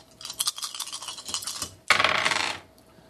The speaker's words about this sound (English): So you're just rolling five dice.